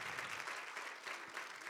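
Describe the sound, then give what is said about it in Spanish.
An audience at a bilingual English-Spanish church service applauds a group of ladies, with steady, dense hand clapping that holds an even level throughout: a continuous wash of many hands with no voices standing out. “Give them a hand clap.”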